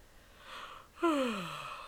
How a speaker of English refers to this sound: Are you yawning because of the thing I just brought up, or yes. Are you just tired in general?